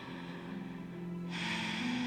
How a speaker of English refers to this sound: You're going to inhale through your nose, and you're going to exhale through your lips. Nice deep inhale. Exhale through your lips. Again, deep breath, inhale.